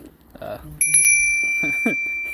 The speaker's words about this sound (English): It's been a long time since you guys have heard notifications ruin a podcast episode, but I'm about to stop anytime soon. And for those of you in the know, yes, that is a sound from Elden Ring. Yes, it is the summoning bell or whatever,